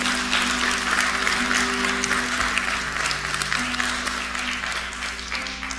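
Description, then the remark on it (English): A church audience gives Jesus a hand clap of praise in a sustained, dense burst of applause, loud and steady throughout, with a low organ-like hum of held tones running underneath and no speech. “Will you give Jesus one more hand clap of praise?”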